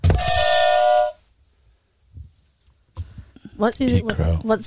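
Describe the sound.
A loud electronic ding-dong quiz buzzer rings for about a second with a bright, steady tone, followed by a short silence and then people talking.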